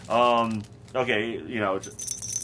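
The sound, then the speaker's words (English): A small blue bell meant for a house pet's collar jingles briefly with a bright, high, ringing shimmer near the end, after stretches of voiced sound. “There's the little blue bell that jingles on them.”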